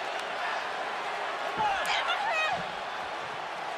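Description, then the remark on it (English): A few sharp hair-whip cracks from Bianca Belair's hair whip land against Sasha Banks during a wrestling match amid a roaring arena crowd, the strikes snapping out loud over the sustained cheering and screams. “Ooh, remember that? That sound. Hair whip.”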